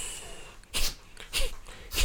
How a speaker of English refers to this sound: I don't have any capillaries, but I'm sneezing.